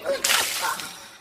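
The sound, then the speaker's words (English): A water balloon is dropped on a person's foot and bursts with one sharp, bright slap, followed by a short hissing splash that fades within a second. No one speaks. “Can you guess what happened? I dropped it on my foot. And now I have wet socks.”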